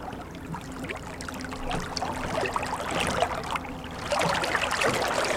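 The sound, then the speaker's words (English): Water sloshes and splashes steadily as the oars of a rowing boat dip and pull, a continuous rowing sound with gentle trickling and dripping between strokes. “Oh, it's so aquatic.”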